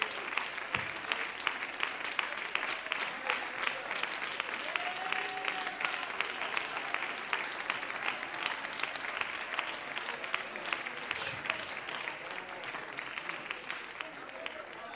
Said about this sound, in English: Could we give the Lord a hand clap of praise in this place tonight?